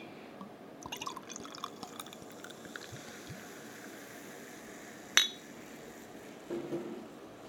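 Quiet liquid sounds of a very dark, stout-like beer pouring into a glass, with faint trickling and dripping and one sharp clink of glass partway through. No one speaks.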